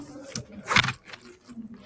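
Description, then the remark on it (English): The zipper of a question bag is pulled open in a couple of quick, raspy bursts, the loudest near the middle, with some rustling and a faint murmur of voices underneath. “And now, let's pull out of the zipper. Question bag.”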